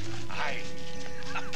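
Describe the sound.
A short call of a large green bird, with a few rising, chirping notes near the end, heard over a steady low hum and a busy, voice-like background.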